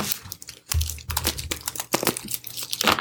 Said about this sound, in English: So, listeners, our tarot cards are all shuffled. They're all laid out on the table.